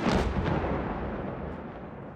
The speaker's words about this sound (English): NPR's producer in Rafah, Anas Baba, says Palestinians were awakened by the sound of explosions and gunfire.